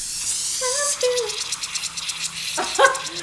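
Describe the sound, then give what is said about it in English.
A pressurized can of sparkling water bursts open and fizz sprays out in a steady, rough hiss lasting a couple of seconds, soaking someone's pants, while high voices yelp and exclaim over it. “Okay, my whole fucking sparkling water just exploded and it's now all over my pants and I am soaking wet.”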